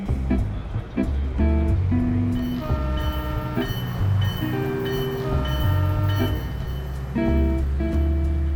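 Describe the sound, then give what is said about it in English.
A train from San Francisco to New York rumbles steadily and loudly throughout as it pulls away from the station, its low engine drone overlaid with shifting horn-like tones, with no voices over it. “As the train pulled away from the station”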